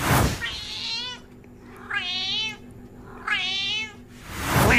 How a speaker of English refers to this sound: If you haven't heard the Scouse cat, just listen. Just listen to it. It's amazing.